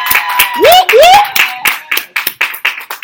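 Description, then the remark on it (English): An audience claps its hands in loud, dense applause as praise to God for the fathers present, with a couple of rising vocal whoops early on, then the clapping thins into more separate, distinct claps toward the end. “Give God a hand clap of praise for the fathers.”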